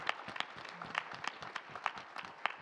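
An audience breaks into a round of applause for the Lord after a shared testimony, many hands clapping in a dense, steady patter of sharp claps that holds for a few seconds without any voices.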